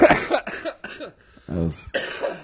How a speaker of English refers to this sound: I'm still sick, so I'm going to cough a lot.